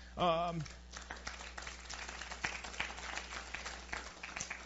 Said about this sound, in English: I feel like Tiger Woods. I just have to say that. That sounded like a golf clap.